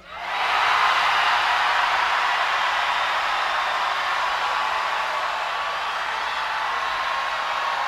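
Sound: festival crowd screaming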